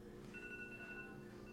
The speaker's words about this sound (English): Oh, there's my alarm. I said it would happen, and it has. I'll stop that alarm.